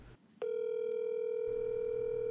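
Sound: outgoing phone call ringing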